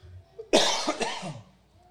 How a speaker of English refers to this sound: There should be a cough button. Yeah, should have one on your mic.